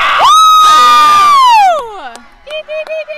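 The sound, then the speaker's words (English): A loud, drawn-out cheering shout rings over a noisy crowd at a sports event, sliding down and fading, then a few short rhythmic yells follow. “Okay, I have to cheer. Oh, I have to cheer.”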